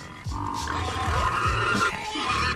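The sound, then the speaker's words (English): A pig grunts and snorts repeatedly in a low, rough, guttural series of bursts, loud, with a harsh, growling, unhappy tone and no talking over it. “Doesn't sound happy. I feel like the pig should be happier sound effect.”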